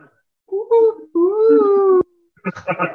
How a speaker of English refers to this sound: He just moves to the level, clicking his tongue. He makes whale calls.